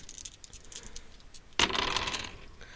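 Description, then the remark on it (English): A few light clicks and taps give way to a sudden clattering rattle of dice rolled for a prowl check in a tabletop role-playing game, fairly loud, tumbling across a hard surface and settling over about a second, landing on a 6. “And then do you want to roll prowl to see what's coming up?”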